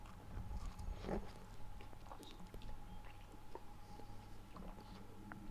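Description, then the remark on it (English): Wet munching as someone chews a mouthful of pizza, with irregular soft bites and squelches over a steady low background hum. “Okay, not only are you going to hear gulping and burping sounds, you're also going to hear me munching on pizza now.”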